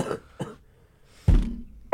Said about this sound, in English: It was so good you had to cough. It was just insane.